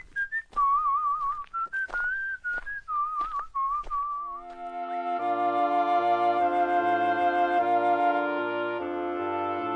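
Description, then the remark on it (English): A bright, trilling whistled melody skips along briskly for a few seconds, clear, then gives way to a steady instrumental tune with a bouncing bass line. “he scrambled out, slid lightly to the ground, and taking the opposite direction to the rat, marched off light-heartedly, whistling a merry tune.”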